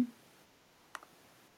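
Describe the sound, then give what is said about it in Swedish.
A single crisp mouse click, a short double-tap snap, standing alone against a quiet, faint hiss with no one talking; the click is on a button labelled "raise your hand". “Och så finns det en knapp där det står raise your hand som man är jättesugen på att klicka på.”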